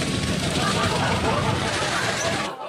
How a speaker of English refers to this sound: Let's head to Queensland instead. It's not every day you see a tank crush a car.